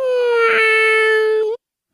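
A single cat meow played in reverse: one long, steady, whining tone rich in harmonics that holds its pitch and then cuts off abruptly, with no talking over it.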